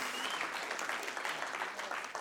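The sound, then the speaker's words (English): A church audience claps steadily in praise of God in dense, continuous applause, a crowd of hands patting out a fairly loud, even wash of sound with no voices standing out. “Come on, if you're going to praise him, praise him. Don't give him a golf clap.”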